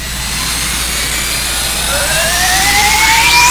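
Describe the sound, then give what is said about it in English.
A spaceship engine runs with a steady, dense roar, then a high whine starts climbing in pitch partway through as the sound swells louder, with no voices. “The engine's running fine”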